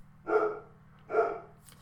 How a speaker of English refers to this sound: Every time it seems that I do the podcast lately, my dog starts barking. Let's see if she's going to stop. Doesn't appear she's going to stop.